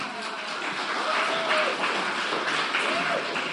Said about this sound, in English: Don't clap for me. Praise the Lord for that.